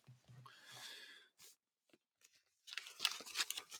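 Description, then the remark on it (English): Crisp rustling of paper Bible pages being handled and flipped, coming in two bursts separated by a quiet pause, the second louder and more crackly. “And so I'll get my paper Bible out again.”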